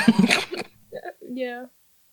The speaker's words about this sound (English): where did you get that cough thing? The cough? Yeah. Oh. Yeah, I don't know. It just never went away after the, fucking being stabbed in the stomach repeatedly for injections and shit.